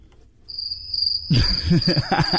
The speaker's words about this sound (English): The crickets. Did you bring them in here or what?